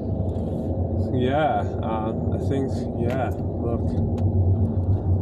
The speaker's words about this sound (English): I hate traffic.